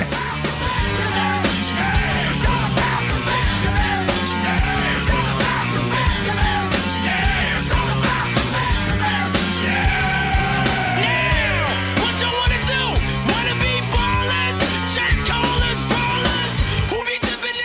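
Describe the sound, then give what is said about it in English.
A loud, dense rock track plays throughout with heavy drums and distorted guitars, while a raw, strained male voice yells and shouts the vocals over the wall of sound. “But if you go back, the screaming is like, it's very similar.”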